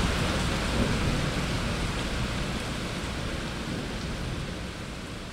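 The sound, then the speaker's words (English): Heavy rain pours down in a dense, steady roar that stays loud for the whole stretch, with a deep low rumble underneath and no voices; a sudden downpour in a city as the heat breaks after very hot days. “We'll just get these kind of incredible downpours in this city.”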